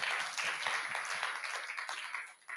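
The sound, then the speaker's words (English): A crowd applauds steadily for a Genesis Trust staff member who has just retired after 19 years, a dense, continuous patter of many hands clapping at an even loudness, with no voices over it. “So can we have a big round of applause?”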